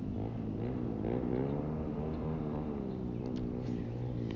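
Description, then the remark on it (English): Buzzing dirt bike engines drone steadily, their pitch rising and falling as the riders rev and shift, with no voices over the continuous mechanical whine. “Some dirt bike riders.”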